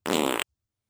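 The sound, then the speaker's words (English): A single short, loud fart sound effect, a buzzy, flapping burst lasting under half a second, followed by silence. “You are stinky. You are an old fart.”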